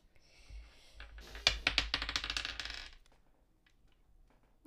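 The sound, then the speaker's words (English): Percentile dice (a d10) clatter and rattle across a hard tabletop in a quick flurry of sharp clicks, bouncing and skittering for a couple of seconds before settling, fairly loud with no talking. “You can also roll a percentile dice.”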